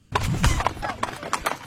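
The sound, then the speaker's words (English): Hooves clip-clop in a quick, uneven rhythm of sharp knocks over a low rumble, with a brief burst of deeper thudding near the start. “I thought Justice the horse was here.”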